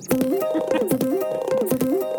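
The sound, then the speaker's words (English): Music with a driving drum beat, crisp tight snare hits cracking through at a steady rhythm, under a bouncy, stepping melody line that repeats at a fairly loud level. “Listen to those drums. My mother refused to breastfeed me, Dave. That's a tight snare”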